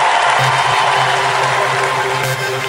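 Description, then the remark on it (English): A crowd cheers and claps loudly and steadily in response to a call for all the successful people to make some noise, a dense wash of applause and shouting voices that holds at full volume without a break. “All the successful people, make some noise right now.”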